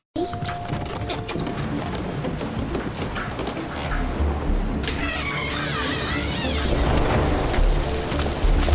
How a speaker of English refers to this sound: Oh man, it's raining.